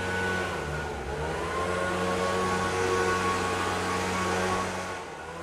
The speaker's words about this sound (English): It's the leaf blower. And from what I can tell, Americans love to show their patriotism by blowing leaves from one place to another place.